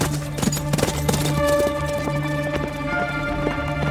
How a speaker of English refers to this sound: Can you gallop like a horse? Faster! He's getting closer!